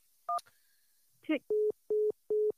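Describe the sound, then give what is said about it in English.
A short two-tone phone beep and a click as a caller hangs up, then a brief rustle, followed by three evenly spaced, steady busy-signal tones on a telephone line, loud and clear. “you hung up.”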